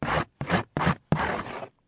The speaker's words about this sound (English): The kittens taught Marley how to sharpen his claws.